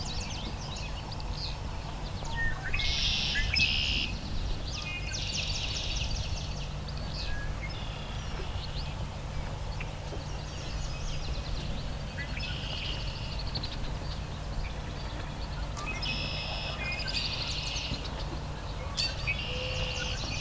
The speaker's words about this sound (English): Oh, here we go. There is a marsh wren near me here. Just not vocalizing.